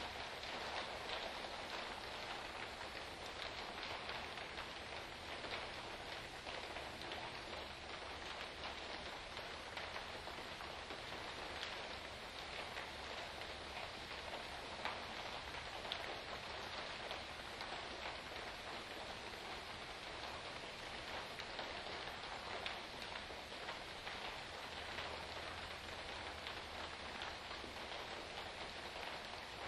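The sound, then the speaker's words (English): Steady rain patters on a surface for the whole stretch, a dense, even hiss of countless drops with a few individual taps standing out, constant in loudness. “Even if there seems to be a solid mass of sound present, if you listen closely, you can pick out individual sounds, like the raindrops, each one which has a transitory, fleeting existence.”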